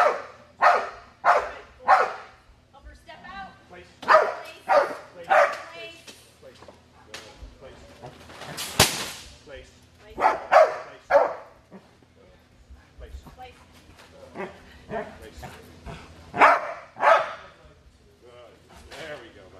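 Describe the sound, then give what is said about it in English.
A dog named Rush barks repeatedly in loud, sharp bursts, sometimes in quick clusters of two or three, with short pauses between volleys and a brief rushing noise midway, doing a bark and hold on a hidden helper on a Mondio ring training field. “When he does the bark and hold, the helper will step out and Rush will escort the helper.”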